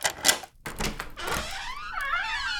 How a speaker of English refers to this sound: Someone knocking on my door at this hour?